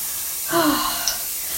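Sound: shower water running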